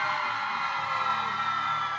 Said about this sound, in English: Good evening, ladies and gentlemen. Welcome to the showroom at Copper Blues Live. Go ahead and give yourselves a big round of applause for coming outside to see the first ever Bella Twins podcast live.